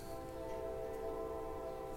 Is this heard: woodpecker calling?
no